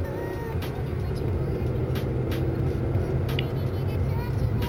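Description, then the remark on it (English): Steady low engine and road rumble from inside a car being driven at 7:24, with scattered sharp knocks and rattles as it jolts over a rough, bumpy surface. “I was in the car again, driving. It was 7:24.”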